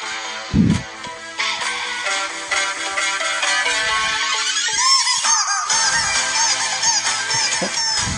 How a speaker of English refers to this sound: But anyway, these girls do the dance while he's plays the rubber chicken. So, but can you imagine how he approaches this? He's like, right, I want you to dance while I play with my chicken.